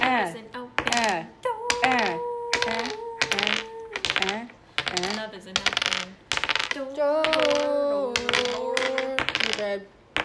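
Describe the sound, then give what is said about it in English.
A die clatters and rattles in quick, hard little clicks, tumbling in short bursts beneath excited, overlapping voices that talk loudly throughout. “Where's the die? It's that's right 4 out of 6.”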